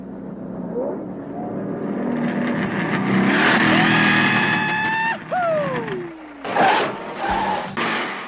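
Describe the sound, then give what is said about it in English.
The engine of the General Lee car revs loudly, its pitch climbing and then dropping sharply, followed by harsh noisy bursts like tires skidding across pavement. “The General Lee managed to find every broken bridge, big truck, and pile of dirt in Hazard County and jump it.”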